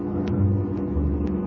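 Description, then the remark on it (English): A car engine drones low and steady as the car comes up the road toward the listeners, its pitch shifting slightly partway through, with three faint evenly spaced ticks above the rumble and no voices. “I hear him. Coming up the road toward us.”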